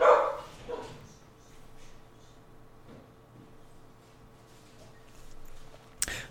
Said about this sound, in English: Oh, come on, dogs. Relax. Like you don't know your owner.